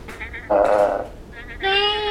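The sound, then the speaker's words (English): Two goats, Paolo and Francesca, a husband and wife, bleat in a shed in a series of wavering, nasal calls: a softer one first, then two loud, drawn-out bleats, with brief pauses between them. “Goats!”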